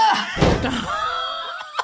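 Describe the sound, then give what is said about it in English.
Two heavy double doors swing open and bang with one loud, booming thud, followed by a lingering metallic ring that slowly fades. “you take 4 bludgeoning damage as the 2 double doors swing open.”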